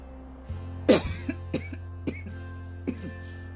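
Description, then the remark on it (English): A sharp cough from allergies to drinking coffee with milk bursts out, followed by a few smaller throat-clearing hacks spaced over the next couple of seconds, with a low steady hum in the background and no talking. “And then I cough.”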